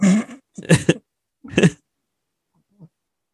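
A man sneezes in a quick series of three sharp, explosive bursts, loud and breathy, followed by a brief faint sniff or grunt after a pause.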